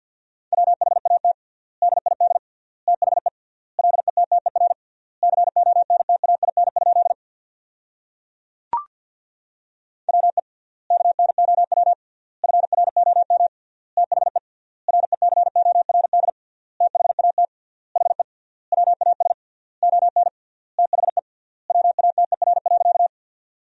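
A steady single-pitch tone keys Morse code at 50 words per minute, sending sentences made from the 500 most common words, in rapid bursts of short and long beeps grouped into words with triple-length word spacing, interrupted briefly by a sharp click partway through.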